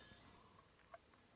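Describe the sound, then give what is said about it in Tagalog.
A single quick clink of drinking glasses touching in a toast, light and fairly faint, ringing briefly with a soft high ting just before it. “Cheers, guys! Cheers!”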